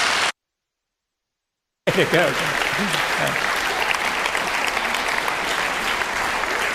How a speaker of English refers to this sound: So apart from beating the clock, we just give an extra round of applause.